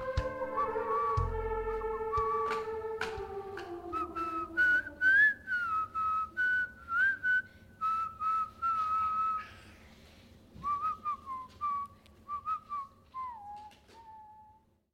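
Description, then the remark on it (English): A child practices whistling, producing a string of short, wavering notes that rise and dip in pitch, with brief breaths between attempts, fairly clear with no talking. “And so now I'm making sure that these guys learn how to whistle.”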